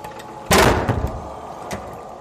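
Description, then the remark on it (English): A doctor swings a door shut with one solid thump and a short rattling settle afterward, heard on its own against a faint background hiss. “the doctor said, and closed the door with a smile of satisfaction.”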